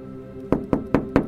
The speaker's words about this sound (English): I'm outside a popular high street phone shop. It's dark. I'm going to peer through the glass. There are some shop assistants, but they're just sort of standing, staring into some invisible void. I'm going to knock on the glass.